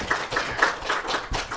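A crowd claps together in a dense, steady patter of many hands, bright and fairly loud, with no voices standing out above it.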